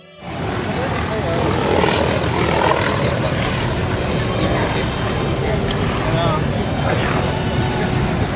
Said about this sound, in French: Donc, il y a, je sais pas, toujours à tout moment, 2-3 hélicoptères qui volent. Et c'est toujours assez incroyable.